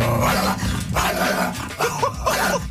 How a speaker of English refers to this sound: But then I found this coyote sound. And this tells me it's not a coyote you'd want to deal with.